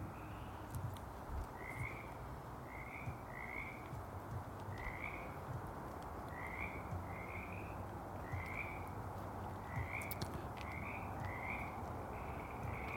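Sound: frog croaking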